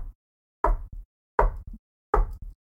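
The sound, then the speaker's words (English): Three evenly spaced knocks on a door, each a heavy thump followed by a lighter second tap, loud with silence between them and no voices. “And then the door knocks incredibly rhythmically.”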